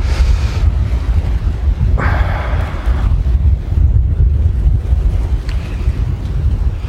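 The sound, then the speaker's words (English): Strong wind buffets the microphone outdoors as someone tries to photograph leaves, a continuous low, rumbling roar with gusty surges, loud throughout, with a brief brighter rush of air partway through and no one speaking. “Oh, it's so windy.”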